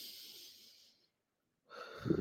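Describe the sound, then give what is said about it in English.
A long, airy breath fades out over about a second, followed by a brief pause before another deep breath begins, fairly loud, with no talking; deep breaths taken in through the nose and out through the mouth. “Situations are changing while you're breathing.”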